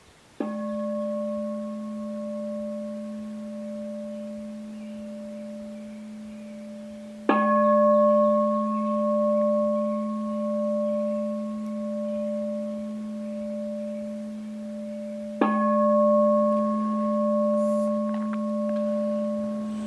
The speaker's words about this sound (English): As you hear the sound of the bell, simply be present to hearing. Ring the bell 3 times to end the meditation.